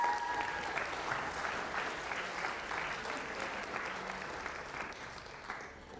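A crowd applauds steadily for about six seconds, a dense wash of clapping that stays fairly loud throughout, with no voices heard over it.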